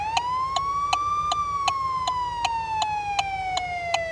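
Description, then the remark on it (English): A police car siren wails in a slow rise and fall, steady, as a car leaving the main road for a highway on-ramp is pulled over, with a regular ticking pulse repeating alongside it and a low rumble of traffic underneath. “And the sirens light up.”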